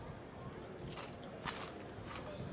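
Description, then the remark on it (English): Crunchy biting into a ham sandwich, a few crisp bursts of chewing, fairly quiet with a steady low background hum. “Okay, a ham sandwich isn't that crunchy.”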